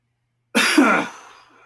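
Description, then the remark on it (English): A single harsh, forceful cough, set off by a tickle in the throat while speaking, bursts out after a moment of silence, loud, then trails off into a short raspy tail with no talking. “Vagina makes me cough.”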